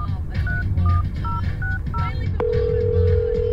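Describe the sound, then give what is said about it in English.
A phone number is dialed on a phone: five quick dual-tone keypad beeps in a steady rhythm, then a single long unbroken tone holds to the end over a low, rumbling background. “Maybe they can help you find your voice, he said excitedly as Little Zabe's mum handed her phone over to call.”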